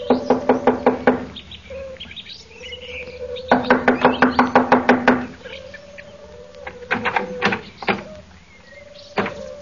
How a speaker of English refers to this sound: Here we are. I'll knock on the door.